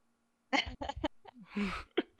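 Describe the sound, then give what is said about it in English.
A short fit of harsh coughing while smoking weed: several quick bursts in a row, with a longer raspy cough near the end and one more sharp cough after it, with no talking. “is coughing on the weeds”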